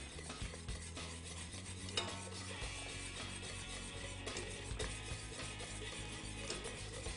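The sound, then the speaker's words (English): Steady scraping and swishing of a utensil in a bowl, stirring custard mixture into melted chocolate a little at a time, with occasional light clicks against the sides and a low hum underneath, continuous for several seconds without speech. “Okay, and then we're going to incorporate the custard mixture into the chocolate.”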